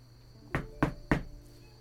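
Three evenly spaced, firm knocks on a patched-up, repaired wooden door, rapping in a quick steady rhythm against a faint background hum with no voices.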